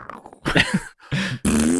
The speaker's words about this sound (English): just like a fart. Unloading a fucking diarrhea shit.